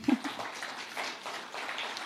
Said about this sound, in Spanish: Bueno, denle un aplauso a Dios.